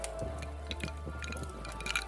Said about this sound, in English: Well, maybe you should get better at aiming for the glass when you pour yourself a drink.